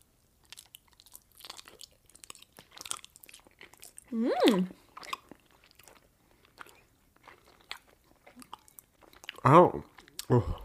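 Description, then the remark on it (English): Wet, sticky chewing of raw honeycomb with wax, a run of small smacking and squelching clicks, broken twice by short voiced murmurs. “Are you ready to eat some raw honey?”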